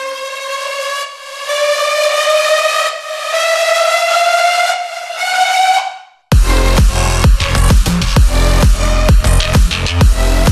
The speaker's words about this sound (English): I just have a riser right here, and then I just make it cut off, and like it comes in and it cuts out, comes in, cuts out. And I have like a little bit of reverb automation, so every time it like has like this cool little like whooshing effect.